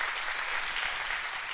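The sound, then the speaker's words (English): An audience claps their hands during a sermon in a dense, continuous burst of applause, steady and moderately loud for the whole moment, with no voices standing out. “Come on, you need to clap your hands on that.”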